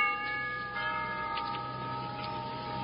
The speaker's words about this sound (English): All right, you two, let's get serious now. Here, I'll ring the doorbell.